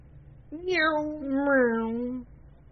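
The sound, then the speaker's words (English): A single voice imitates a car engine with one sustained, humming vroom that rises briefly and then holds steady for under two seconds, fairly loud. “And that marks the time of the podcast where we just start making car noises.”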